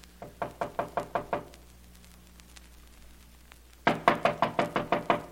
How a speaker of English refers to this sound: Wait, I'll knock.